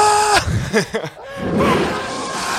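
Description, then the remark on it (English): A person lets out a restrained, strained scream, with a brief voiced cry sliding downward, a few choppy bursts, then a hoarse, breathy sustained yell at moderate volume. “I can't scream that loud, so that kind of probably sounded really dumb.”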